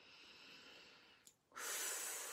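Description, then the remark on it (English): A slow, airy breath drawn in for about a second, a short pause, then a louder, rushing exhale, during a tapping exercise on the inner eye. No one speaks. “So just tap on the inner eye, breathing in, breathing out, and you repeat after me.”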